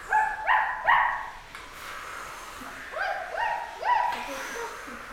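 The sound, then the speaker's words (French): An electronic robot dog sound effect, made from a dog noise turned robot-like through a microphone: two sets of three synthetic, bark-like chirps with rising pitch, fairly loud, separated by a short pause with a faint hiss underneath. “Et avec cette sorte de bruit, on a fait le chien électronique.”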